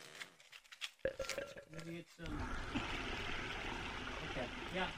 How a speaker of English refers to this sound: Grab a highball glass, put a couple of cubes of ice in there and a little bit of tap water, will you?